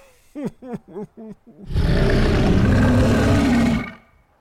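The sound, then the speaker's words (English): A voice imitates an ice-breathing dragon's roar: five short, pitched growling bursts, then a long, loud, raspy roar that holds steady for about two seconds before cutting off. No one speaks. “That was an impressive impersonation.”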